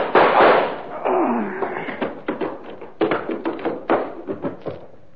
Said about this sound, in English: All I need is this gun. What gun? Yeah, the kind that goes bang, bang, like this.